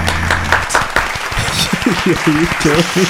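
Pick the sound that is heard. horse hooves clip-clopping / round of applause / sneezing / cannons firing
round of applause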